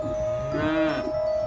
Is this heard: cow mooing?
yes